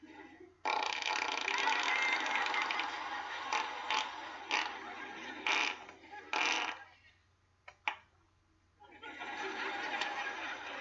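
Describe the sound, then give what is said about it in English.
A voice makes a long, loud, raspy fart imitation, an impression of astrophysicist Neil deGrasse Tyson passing gas early in the morning after breakfast, sputtering in uneven bursts for several seconds, breaking off into a brief silence and a click, then rasping again near the end. “All right, here's an impression of astrophysicist Neil deGrasse Tyson early morning after breakfast cutting the cheese.”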